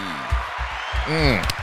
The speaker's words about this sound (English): So good to hear that applause from a man who so richly deserves it.